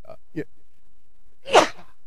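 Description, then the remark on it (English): A single loud, sharp sneeze bursts out, preceded by a couple of soft, brief breathy sounds, then quiet. “And I got a sneeze, so it's probably going to come here soon.”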